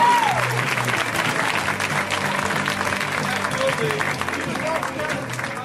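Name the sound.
audience applause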